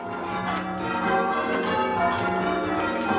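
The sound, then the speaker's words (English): Church bells ring out in change ringing, a dense, continuous peal of overlapping strikes with rich lingering tones, loud with no voices present. These are giant bells in a church tower, the oldest church bells in the United States. “These giant bells were designed to be played in a specific way, in a style called change ringing.”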